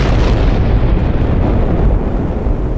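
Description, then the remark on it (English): A bomb explosion sound effect: a loud, heavy blast of deep rumbling noise that roars steadily for a few seconds, its hissing top end slowly thinning out, with no voices. “Let me drop a bomb for Brandon.”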